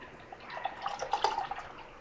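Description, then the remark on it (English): Beer, a Mosaic India Pale Ale, pours steadily into a glass, with bright trickling and splashing that swells in the middle and eases off toward the end, with no voices. “Be a little more aggressive with my pour this time.”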